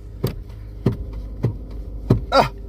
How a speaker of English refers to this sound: I'm buckling my seatbelt.